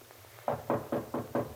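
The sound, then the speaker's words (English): Four firm knocks on a professor's wooden door, evenly spaced in a steady rhythm, clear with no voices, after a brief quiet start. “At the moment, he knocks at Professor Stuart Rogers' door.”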